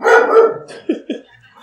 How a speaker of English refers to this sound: Oh, here's the dogs. Who's here? Nobody?